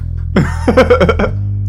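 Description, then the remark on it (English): A short cluster of throaty coughs, about four quick bursts in a row, over a steady low background hum. “I kind of chuckled to myself for a second while I'm coughing, and I continue on.”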